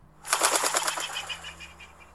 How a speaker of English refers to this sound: No doubt when a bird passes by, you've heard its wings flap. Here's a pigeon flying.